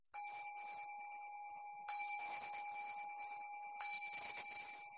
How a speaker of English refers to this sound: So we'll do that. I'll ring the bell just as a way to begin this reflection.